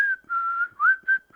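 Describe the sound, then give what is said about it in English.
Someone whistles the eerie Kill Bill whistle melody, a few clear sustained notes with a sliding rise between them, clean and alone with no talking. “She puts it on and they start doing the Kill Bill whistle, which they do throughout these episodes, I should say.”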